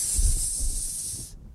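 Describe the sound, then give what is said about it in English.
A voice imitates air escaping a balloon with one steady hiss lasting over a second before cutting off abruptly, with faint low rumbles underneath. “Let all the air out of the balloon.”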